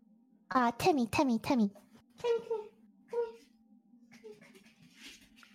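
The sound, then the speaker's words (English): A female dog named Timmy lets out a quick string of three or four high, falling whines or yelps, followed by a few softer, shorter whimpers over a steady low electrical hum. “My dog. Sounds like.”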